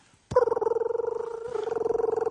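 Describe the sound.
A voice imitates a futuristic, Jetsons-like scooter: a sudden start into a steady, mid-pitched buzzing hum with a rapid fluttering pulse, briefly dipping midway before carrying on for about two seconds.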